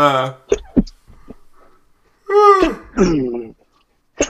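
A few short, sharp nasal bursts, then two drawn-out voiced gasps like a sneeze building and releasing, loud, with no talking.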